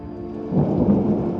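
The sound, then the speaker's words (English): A thunderstorm with a low roll of thunder swelling up over steady, hissing rain, loud, with no voices. “He looked up at the stars as the storm closed in and saw them extinguished, one by one, until just two remained.”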